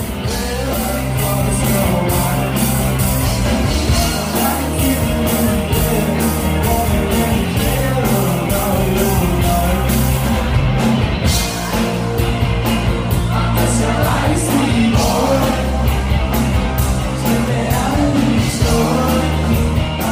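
A live indie pop band plays a loud, steady song with a driving drum beat and full instrumentation, while the crowd's yells and shouts mix into the music throughout.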